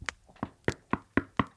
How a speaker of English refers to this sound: So there's a knock at the door.